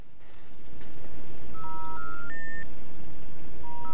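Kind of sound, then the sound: machine, dial-up modem dialing tones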